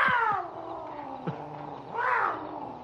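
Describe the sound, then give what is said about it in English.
A cat yowls in a long, wavering wail that dips and then swells into a louder, rising cry near the end, heard alone with no talking. “I suppose I shouldn't wish a man to lose some sleep, but I'd sure like to hear that cat sound off.”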